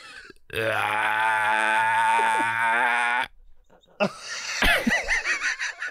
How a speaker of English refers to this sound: I just need to burp real quick before we start, poor thing. So, real quick, I'm just going to burp. Ready?